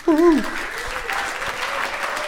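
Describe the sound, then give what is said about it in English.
An audience applauds the evening's closing musical guest with steady, dense clapping that holds at an even level throughout, opened by a brief voiced whoop or cheer at the very start. “While he's getting ready, big round of applause for our musical guest and closing us off for the evening,”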